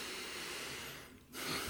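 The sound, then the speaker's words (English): A deep, airy breath: a long rushing exhale that fades to a brief pause before the next breath starts. No one speaks. “You know the importance of breathing.”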